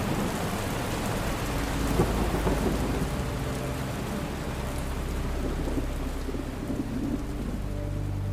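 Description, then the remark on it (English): A steady roar of heavy rain pours down in a storm while deep rumbling thunder rolls continuously underneath, loud, with no voices present. “When I recounted my story to the police 3 hours later, after spending the worst of the storm under a bridge near the highway, they launched an immediate investigation.”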